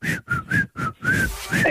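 A piercing whistled tune, loud and close, with a short run of clipped notes followed by longer sustained ones, heard alone.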